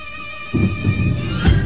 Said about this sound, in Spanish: el trueno también fue parte de los efectos de sonido que tenemos preparados aquí en Ciudad Caníbal